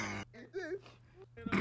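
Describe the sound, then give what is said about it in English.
A sharp sniffle, then a short wavering vocal murmur, and another noisy sniffle-like breath right at the end. “That sniffle.”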